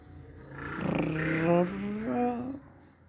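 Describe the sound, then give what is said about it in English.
A motorbike passes, its engine note climbing in pitch as it revs, swelling to a peak and then dropping away after a couple of seconds. No one speaks. “That was just a, sorry, there's a motorbike.”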